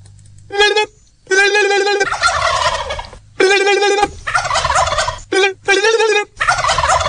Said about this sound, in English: That was wild turkeys and a turkey. That was me calling the wild turkeys.